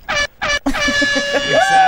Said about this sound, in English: I wanted. I wanted the air horn.